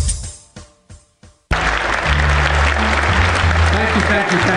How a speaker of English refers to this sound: and a special thanks to the 42% of you actually applauded.